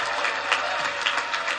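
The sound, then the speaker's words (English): A crowd applauds the campaign staff at a political campaign speech with steady, dense clapping that holds an even level throughout, with small swells in the texture and no voices standing out. “The greatest campaign staff ever assembled, and give them a great round of applause for all the great work they have done.”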